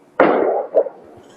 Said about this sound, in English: Nah, it's fireworks. This is we still ain't figured out what fireworks are coming from.